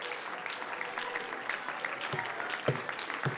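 A crowd, answering a call to clap their hands and shout, claps steadily in dense, continuous applause, with scattered shouts and whoops rising over the clapping and a few sharper bursts near the end.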